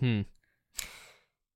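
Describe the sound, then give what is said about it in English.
A quiet yawn: a brief voiced groan, a short pause, then a long breathy exhale that trails off, with no talking. “I just yawned and then was like, no, I'm gonna keep trying to talk.”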